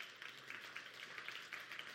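A church audience claps together to celebrate money raised in a fundraising push for camp, a steady, dense patter of many hands, fairly faint overall, with no voices speaking over it.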